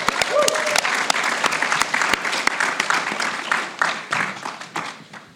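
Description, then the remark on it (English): A studio audience gives sustained applause for tennis player John McEnroe during a special broadcast from the 2018 Kids Conference: a dense wash of many hands clapping at a steady loud level, with a few whoops and cheers rising briefly near the start. “Okay, studio audience, let's give John McEnroe a big Kids Conference applause.”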